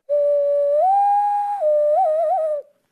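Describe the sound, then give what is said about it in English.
A person imitates a loon call by whistling through cupped hands: one hollow, breathy tone that rises, holds, dips back down and ends in a short wavering warble, clear with no talking. “my loon call that I can do with my hands”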